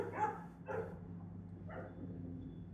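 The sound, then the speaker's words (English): A dog outside an apartment barks three times, two quick barks followed by a third after a pause, sounding somewhat muffled over a steady low hum. “Slash a dog who's outside the apartment.”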